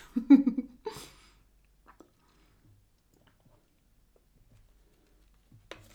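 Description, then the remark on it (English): A wet, gurgling slurp of someone sipping water, followed by a sharp swallow-like click, a few faint mouth ticks in near silence, and one more brief sip at the end. “Ooh, those were some juicy sips.”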